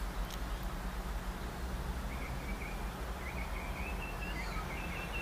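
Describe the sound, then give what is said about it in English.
Faint birdsong outdoors in the morning, at 6:42 a.m. on 9 March: short high chirps repeating in loose runs over a steady background hiss and low hum, with no talking. “Alrighty, let's listen to the birds.”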